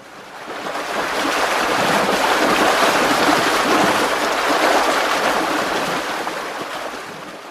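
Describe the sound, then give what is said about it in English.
A steady, dense roar of rushing river water swells in over the first couple of seconds, holds loud and full, then eases slightly toward the end, with no voices. “The river roared in her ears as the tablet traveled down her throat and into her innards.”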